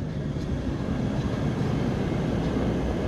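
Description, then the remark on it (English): A train rumbles past, a steady, dense low roar that holds at an even loudness throughout, with no voices over it. “sorry, the train's coming again.”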